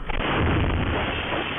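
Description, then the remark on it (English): A house across the street explodes, a loud, dense, muffled roar that rumbles on steadily for over a second with no one speaking. “He and his next door neighbor were talking when a house across the street blew up.”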